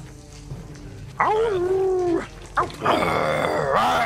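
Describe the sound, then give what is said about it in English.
A person voices a gnoll's growl: two loud, drawn-out guttural snarls, the second rougher and longer, over faint background noise. “Here comes the growling of the gnoll.”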